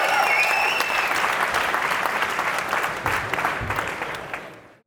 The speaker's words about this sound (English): If you want Gary to ever come back to Helsinki, clap a little bit louder, please.